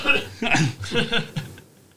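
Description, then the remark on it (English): A person gives a few short coughs in quick succession, each a rough voiced burst, fading out after a couple of seconds; sounds like a deliberate imitation of coughing. “Over here, someone coughs.”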